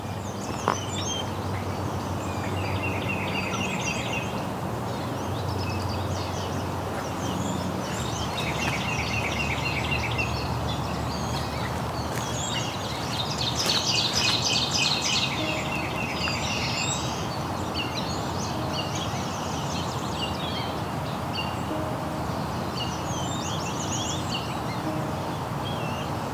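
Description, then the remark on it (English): A mid-May morning chorus of migrating warblers at Woodland Cemetery in Burlington, Ontario, along the shore of Hamilton Harbor, with high, buzzy and trilled songs overlapping almost continuously over a steady outdoor background, with no voices present. “Another morning in mid-May, another cohort of migrating warblers.”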